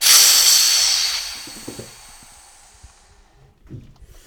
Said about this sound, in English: Okay, so here's what I have to do. … releases the pressure on the lid to pour some of the liquid back into the tank.